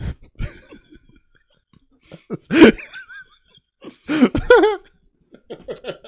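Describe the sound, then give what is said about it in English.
Someone bursts into laughter that breaks into a loud cough and a choking gag, with short wheezy, strained vocal bursts and gasps in between, with no clear speech. “What was that? A cough and a gag.”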